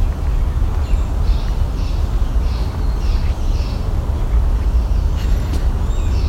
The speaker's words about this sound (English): Yellow warbler.